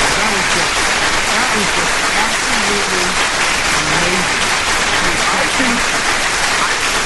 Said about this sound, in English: That goes in the vault right there. That was – I got to give you another round of applause.